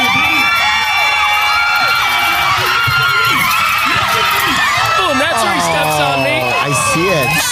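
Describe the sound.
A large crowd cheers loudly at a bull ride, a dense, sustained roar of many overlapping voices with high shouts and rising yells swelling throughout.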